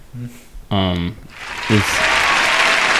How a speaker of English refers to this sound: Yo, guys, you know what? Can we get the applause track? Because I'm very proud of us for not clowning his teeth.